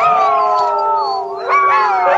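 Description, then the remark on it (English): Dogs, irritated by cats, howl together in long, wavering, overlapping cries that rise and fall, loud, with no talking underneath. “Yeah, well, the dogs are getting irritated because right of the cats.”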